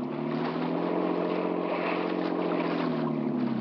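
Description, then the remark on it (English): A motorboat engine drones steadily, a constant low throbbing hum with a rushing wash of water over it, holding at an even loudness throughout with no voices. “Lying in the boat. Cut in faster, Alex.”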